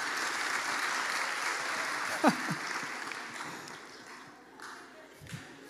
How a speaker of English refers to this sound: We got to get our clapping right. Got to get our clapping right.